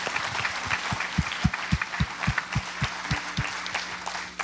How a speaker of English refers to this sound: Will y'all give God one more hand clap of praise? Amen.